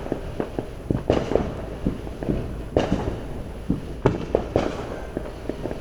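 Fireworks crack and pop in an irregular volley, a few louder blasts standing out among quicker, smaller bangs, with a low rumble between them and no voices.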